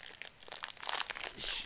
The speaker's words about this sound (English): let's bring it back what it's all about, ripping some packs. Mosaic trading cards. Here we go.